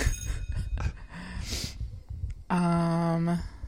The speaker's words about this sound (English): I wish I had a clock sound. No, just a bell.